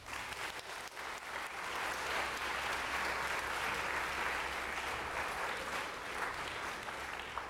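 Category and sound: crowd, round of applause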